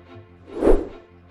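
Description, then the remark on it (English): A single whoosh sweeps in, swelling to a loud peak mid-clip with a soft thud at its center before fading away. It is a quick transition effect with no voices. “All right, whoosh me in”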